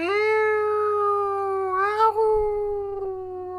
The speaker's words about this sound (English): Oh no, the girls heard a howling noise.